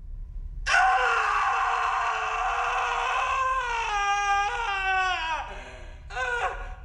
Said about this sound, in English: there and starts screaming